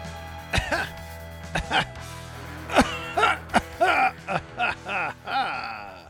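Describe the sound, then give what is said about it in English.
A person coughs and clears their throat in a series of harsh bursts, with short gasping breaths between them, building to a drawn-out final hack; a non-COVID cough. “That right there, that was a non-COVID cough.”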